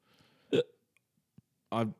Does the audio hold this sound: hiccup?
yes